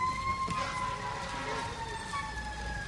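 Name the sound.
fire truck sirens arriving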